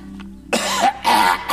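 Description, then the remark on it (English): Someone clears their throat, three loud, raspy bursts in quick succession after a brief quiet moment, with no talking. “I thought, God, I've never heard you clear your throat before you spoke.”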